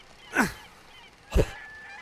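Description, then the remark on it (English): Two loud, harsh seagull squawks about a second apart as a gull is hit by rocks thrown from a trash barge, each a brief raspy cry with a faint steady hum between them and no one talking. “Could throw rocks at the gulls.”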